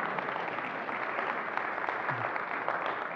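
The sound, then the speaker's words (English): An audience at CBC church applauds steadily for members who have attended for more than 25 years, a dense wash of many hands clapping at an even, moderate loudness throughout, with no voices breaking through. “Yeah, give them a hand.”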